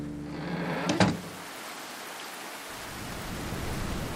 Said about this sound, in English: Then I slammed the door shut and could hear it no more.